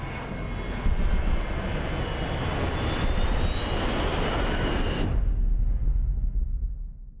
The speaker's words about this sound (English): Soon after, a passenger plane is shown headed towards Brandon.